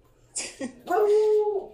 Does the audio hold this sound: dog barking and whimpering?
yes